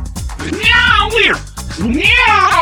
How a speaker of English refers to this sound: Meow, weird.